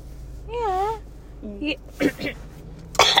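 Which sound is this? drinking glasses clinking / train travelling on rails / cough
cough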